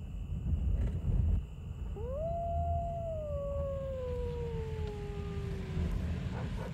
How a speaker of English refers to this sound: Wolves. Oh, she breeds wolves too? Yeah.